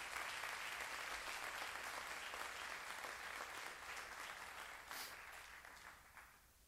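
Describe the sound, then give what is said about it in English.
A church audience claps together in sustained, dense applause as a hand clap of praise to God, steady and fairly loud at first, then gradually thinning and fading toward the end, with no voices over it. “If you're with me, give God a hand clap of praise.”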